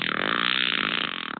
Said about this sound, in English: Well, we are known as proper gentlemen because we always ask... Do you mind if I fart?